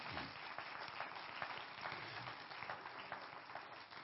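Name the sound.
audience clapping hands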